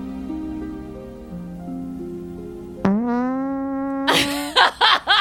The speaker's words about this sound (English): God. Sorry. Sorry. I farted. I will never not laugh at a fart joke.